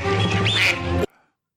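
A loud, raspy duck quack sound effect played as the Oregon Ducks are named the number one team, one drawn-out nasal honk lasting about a second that cuts off abruptly into silence, heard on its own without speech.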